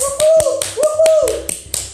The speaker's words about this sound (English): I need to give it to my baby with a round clap of applause this morning.